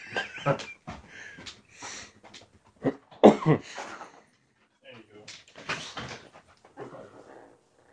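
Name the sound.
dog whimpering and barking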